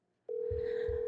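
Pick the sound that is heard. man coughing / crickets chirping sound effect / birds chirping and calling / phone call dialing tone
phone call dialing tone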